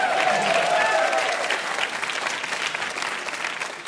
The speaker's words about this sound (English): You may applaud. Yeah.